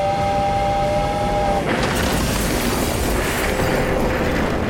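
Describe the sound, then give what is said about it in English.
A train horn blares steadily, then a sudden loud roaring crash as a train smashes through, followed by a continuous heavy rumble of rushing rail cars. No one speaks. “On live TV, broadcast to thousands of people throughout the greater Springfield area, a train smashed through the shot, smooshing the hosts, the cooking demonstrators, and most of the crowd into a wet, slick, red goo.”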